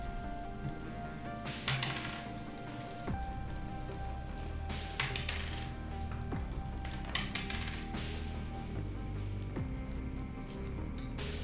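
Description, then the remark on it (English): Dice clatter and tap in several short bursts over a steady background of music, rolled for an attack in a tabletop game and sounding fairly sharp, with no one speaking. “Use different dice, dude.”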